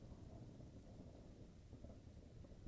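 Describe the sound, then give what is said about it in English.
A low, continuous thunderstorm rumble rolls on steadily, heavy in the bass with a soft rain-like hiss above it and no voices. “understanding that this storm is merely an external force.”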